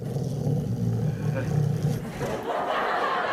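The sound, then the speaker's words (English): In a comedy sketch, Major, Joe Biden's dog, growls and roars loudly: a deep, rumbling snarl for about two seconds that breaks into a harsher, breathy roar. “Come on in here. That's right. It's my dog.”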